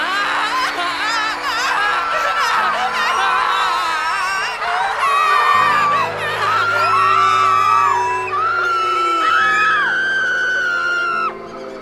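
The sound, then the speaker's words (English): Many voices scream and whoop together in a sustained, loud group outcry, overlapping wails rising and falling for several seconds before cutting off abruptly. “So scream with me again, universe, with all your pain and sorrow and fear and loss. Scream.”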